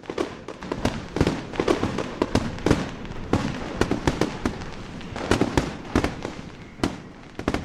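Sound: fireworks going off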